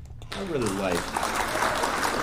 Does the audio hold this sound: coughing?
no